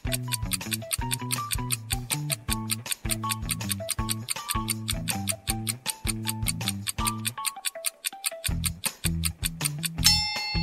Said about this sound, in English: Time's ticking.